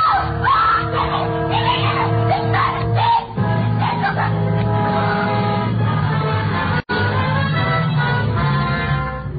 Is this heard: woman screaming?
yes